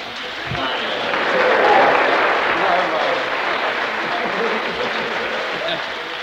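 Steady audience applause at a meeting, welcoming a man being introduced: a dense wash of many hands clapping that swells slightly early on, then holds at a fairly even, loud level for several seconds.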